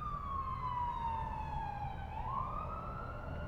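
An emergency siren wails steadily and fairly loud, its pitch sliding gradually downward before jumping back up, over a low rumble of traffic, with no one talking.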